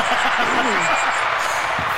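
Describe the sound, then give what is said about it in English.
An audience applauds with steady, dense clapping that fills the whole moment, with a few voices audible underneath the noise. “So let's give them a nice round of applause.”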